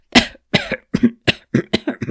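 A rapid barrage of about seven or eight sharp, loud coughs in quick succession from a concert audience coughing between movements, with no talking.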